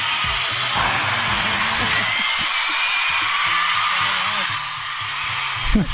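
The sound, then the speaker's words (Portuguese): A concert applause sound effect played on a live radio show: steady, dense applause from a large crowd, a continuous hiss of many hands clapping that holds at an even level throughout, with low murmuring voices faintly underneath. “Essas palminhas do concerto.”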